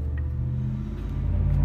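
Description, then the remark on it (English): A heavy truck's engine rumbles loudly and steadily outside, a deep low drone that holds throughout and swells slightly toward the end as the truck passes. “Hey guys, look, the loud-ass fucking truck made an appearance tonight.”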